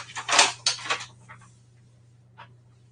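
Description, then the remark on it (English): Organic brown rice flour pours into a bowl in a soft, rushing hiss for about a second, trailing off, followed by a faint brief tap, all over a low steady hum. “I actually just pour this one.”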